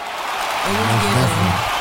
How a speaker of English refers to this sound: Oh, man, dope shit, man. Let me get that a round of applause, man.